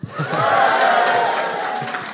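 An audience cheers and claps together in a sustained burst, broad noisy whoops and applause at steady loudness for a couple of seconds.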